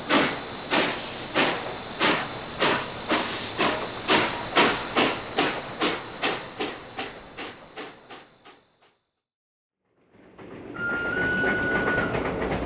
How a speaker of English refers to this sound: This is the last train for the night, but I'm sure I hear another one following us.